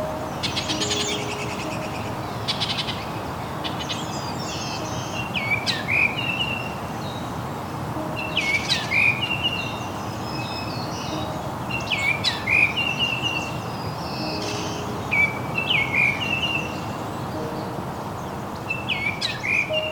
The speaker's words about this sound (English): On this morning, I'm walking the Woodland Cemetery in Burlington, Ontario, along the shore of Hamilton Harbor. A mix of currently breeding birds, migrating birds, and year-long residents is filling this urban landscape with song.